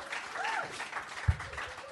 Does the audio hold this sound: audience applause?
yes